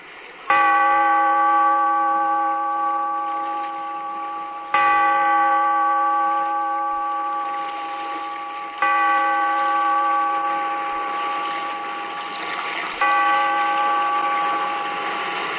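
A heavy bell tolls four times at slow, even intervals, rung by the bellkeeper to open The Weird Circle in a cave by the sea, each loud strike ringing out and fading gradually into the next. No voices are heard.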